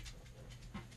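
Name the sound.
dog panting and whimpering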